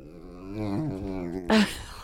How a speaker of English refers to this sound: My mom is recording the dogs fighting.